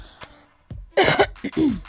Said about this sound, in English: Sorry, my voice is a little cracked because like I have flu and I have a cough. I have a dry cough.